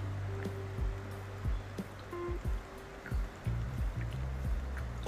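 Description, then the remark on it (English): Liquid sounds of drinking water during a water break, with several soft gulps or splashes spaced irregularly over a low background hum, no talking. “Wait, water break.”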